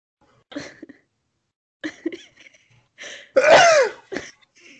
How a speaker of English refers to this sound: Also, I need to sneeze, so...